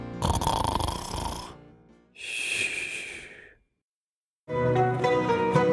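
Three loud, harsh snores in a row from a man sleeping in a car, each a long rattling inhale with a buzzy, wheezy texture, separated by short pauses of silence. No talking.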